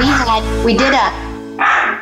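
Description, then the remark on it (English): A male dog barks three times in quick succession, loud, each bark sharp and strained with a brief pause between them. “Sorry about that, my dog.”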